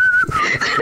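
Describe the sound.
A father whistles a short melodic phrase, the clear pitch sliding and shifting between notes, loud with no talking.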